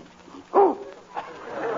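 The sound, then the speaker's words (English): A man makes a dog-like bark, one short, loud, throaty woof from a nervous catch in his throat, followed by a softer rough vocal sound a moment later. “I guess you speak their language”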